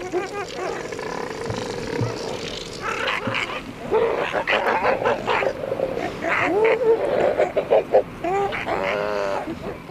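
Elephant seals bellow and roar in loud, throaty bursts close by, calls overlapping almost continuously, with higher squawking calls mixed in among the deep grunts.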